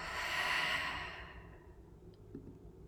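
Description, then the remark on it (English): A single long, airy exhale like a heavy sigh, fairly loud, as someone lets go of a deep breath, fading out after about a second and a half into quiet background noise. “So whatever it is you're going through today, let's take a nice deep breath in and let that go.”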